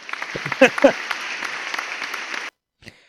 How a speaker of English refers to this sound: So, good catch, a round of applause. Round of applause. Yeah, good for you.